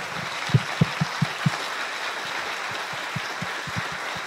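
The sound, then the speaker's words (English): An audience in a theater applauds to thank the volunteers who set up the event, a steady, dense wash of clapping with a run of louder, evenly spaced individual claps near the start, then a few scattered sharper claps as it continues. No one speaks. “And I just want to salute them and thank them, and if you'll join me in giving them a round of applause.”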